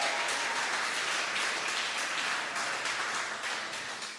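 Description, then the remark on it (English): An audience breaks into steady, sustained applause in response to a speaker saying that cancel culture is not kingdom culture, many hands clapping at once in a dense, bright wash that holds evenly and fades slightly toward the end, with no voices over it. “Because at some point, we're going to get at least 10 people to clap on this.”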